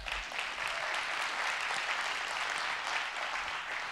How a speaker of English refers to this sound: Thank you for that golf clap. Come on, let's get a man clap up in this.